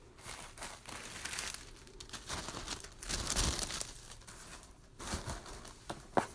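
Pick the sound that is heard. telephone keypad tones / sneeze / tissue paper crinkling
tissue paper crinkling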